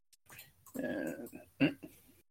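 A dog lets out a drawn-out whining growl, then a sharp, louder yelp-like burst followed by a few softer whimpers, all within a couple of seconds and without anyone speaking.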